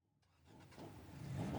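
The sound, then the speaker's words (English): A Nissan car's engine turns over and revs up for a drag race, its growl building steadily louder and higher over a second and a half, with no voices. “Did I mention that this Nissan, hardly the world's most reliable car for drag racing, is not even paid for yet?”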